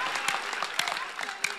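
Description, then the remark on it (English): A crowd at a religious service claps hands at the preacher's request in a steady, dense patter, with a few sharper individual claps standing out above the continuous applause throughout. “Then clap your hands a little. Keep clapping.”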